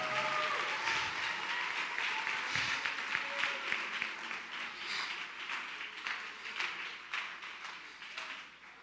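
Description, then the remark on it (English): An audience claps steadily, many hands blending into a dense, continuous applause that stays fairly even before fading slightly near the end. “Clap your hands, everybody, and give them praise.”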